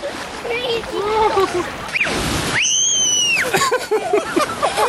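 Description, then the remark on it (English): A freezing-cold wave crashes and washes over people in the water with a broad rushing splash, met by a loud, sustained shriek, while excited voices chatter and exclaim before and after. “Here comes another one. Oh, my goodness! It's freezing!”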